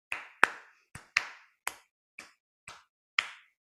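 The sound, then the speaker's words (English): Hand claps beat out a short rhythm pattern, as distinct from a beat, eight sharp claps with uneven spacing, some quick pairs and some longer gaps, performed alone with no talking. “So coming up with a little rhythm pattern as distinct from beat. So it might be clapped.”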